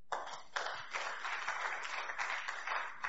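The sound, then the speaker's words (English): A church audience listening to a sermon claps steadily, many hands blending into a dense, bright patter with slight swells in intensity, no voices standing out above it. “You even clap.”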